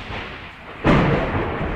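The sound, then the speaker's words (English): A sudden deep boom of thunder breaks out of a low rumbling background and rolls on steadily, loud and broad, with no voices present. “That was thunder.”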